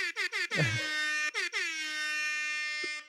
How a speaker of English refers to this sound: Also, my air horn app is loading now, so there it is.